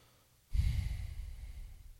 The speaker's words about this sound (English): So take a big inhale, and I'll do it with you. And then exhale through your nose. So another big inhale.